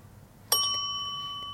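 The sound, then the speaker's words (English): A single bright bell strike rings out clearly and then sustains, its clear metallic tone lingering and slowly fading against a quiet background with no voices. “And you hear the bell again.”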